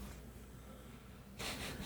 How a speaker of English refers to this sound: We're sorry he's snoring around, guys. We don't even know if you can hear it. We don't even know if you can hear it. Maybe we're just making a big deal out of nothing. But he is snoring super loud over here.